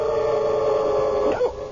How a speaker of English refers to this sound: See him? Little white dog, curly tail. Oh, silly little thing.